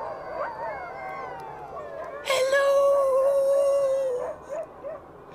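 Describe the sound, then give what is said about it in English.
Several dogs howl together in long, wavering cries that overlap, with one loud, steady howl rising above the rest midway before the chorus fades into short yips. “Captain said, dogs. If there are dogs, there must be.”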